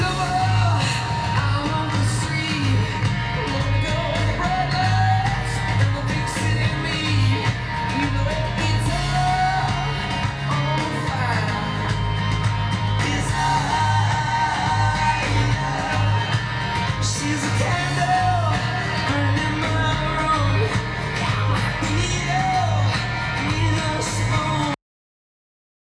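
A loud, full rock song plays steadily for about twenty-five seconds, with a driving, pulsing low end, dense guitar layers and raw, shouted-sounding vocals before cutting off abruptly.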